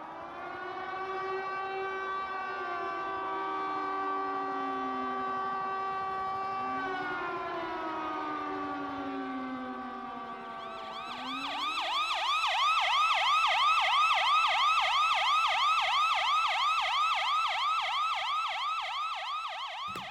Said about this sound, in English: That song, with a little extra fire alarm siren thrown in from me